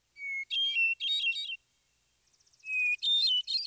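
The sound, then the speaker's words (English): Bursts of high, liquid chirping and twittering from a timberdoodle, a bird, two clear flurries separated by a brief lull with faint rapid ticking notes, with no talking. “Timberdoodle sounds, for all the world, like the name of a child's game or perhaps a toy. But the word actually refers to a bird, a rather odd little fellow”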